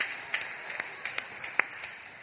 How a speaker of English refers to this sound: Just a few weeks ago, my wife and I, we celebrated 10 years of marriage. It's awesome. I appreciate the half clap, right?